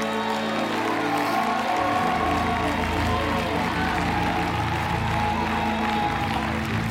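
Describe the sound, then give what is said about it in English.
A large crowd in Elkhart, gathered at an altar, claps and shouts continuously, a dense roar of applause and raised voices without pause. “If you're thankful that you found an altar, get to shouting and clapping.”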